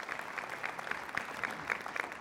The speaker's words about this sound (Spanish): Un aplauso a Dios por ello.